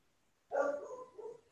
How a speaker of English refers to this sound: I don't know what is going on with my dog. She barks at everything. Somebody's walking by, she starts to bark. There is a light outside, she starts to bark.